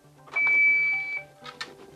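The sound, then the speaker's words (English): A defibrillator (AED) being applied during CPR in a training drill gives a steady, high-pitched electronic beep lasting nearly a second, then a softer, lower tone, with bursts of rustling and handling noise around it. “So CPR's happening, and now I'm going to apply the defib.”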